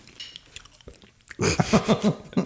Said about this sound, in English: Well, folks, we have a treat for you. I have been chewing all the time.